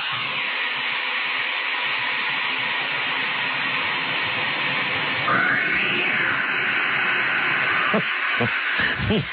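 A comedic, manipulated sound of a cat tossed into Mel's Hole: a dense, noisy wash of sound, then a single cat's yowl rises and falls with a hollow echo as it disappears down the hole, followed by a few short thumping bursts near the end.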